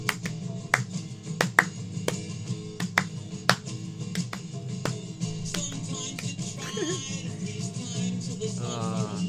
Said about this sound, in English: Clapping along with this song would work. I may have done it.